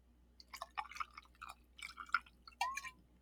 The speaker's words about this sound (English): I'm going to do this pour right close to the mic. Let's see if you guys can hear it here. I got the ice in the glass, and here we go.